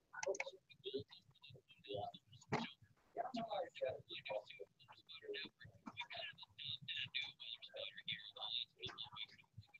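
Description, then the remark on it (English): A dog whines and yips in short, high bursts during a Skype video call, heard through a tinny, compressed recording, with soft, whispery human voices running underneath nearly the whole time; the dog belongs to a weather spotter in Patrick County, Southern Virginia. “who's up in Southern Virginia in Patrick County, he started bringing his dog on the Skype call with us.”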